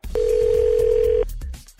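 A telephone dial tone on an outgoing call placed by the Thunder and PT morning show on 102.9 The Wolf: one steady, loud, mid-pitched hum that holds for about a second and then cuts off, leaving faint clicks and low background noise.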